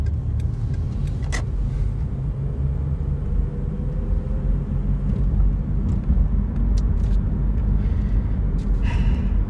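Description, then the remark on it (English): Steady, heavy rumble of a car driving at 30 on a main road with a speed limit of 25, heard from inside the vehicle, with constant low engine and tire noise and a few faint clicks and rattles, no one talking. “Speed limit here is 25. I'm going 30.”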